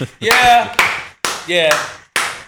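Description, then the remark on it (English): A handful of sharp, loud claps in an uneven rhythm, mixed with whooping, tonal voice sounds, like a small burst of applause and cheering. “Round of applause for this man and his growth.”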